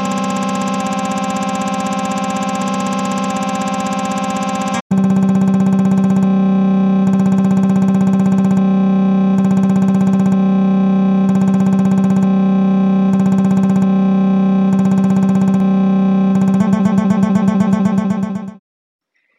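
A loud, buzzy synthetic tone run through distortion effects: steady at first, then abruptly chopped into rhythmic pulsing bursts, ending in a rapid fluttering warble before cutting off. No voices.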